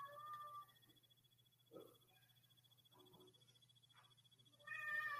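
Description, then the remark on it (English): A cat meows twice, once at the start and again more loudly at the end, with quiet rustling and a steady low hum in between. “Oh, I got a kitty that's making noises.”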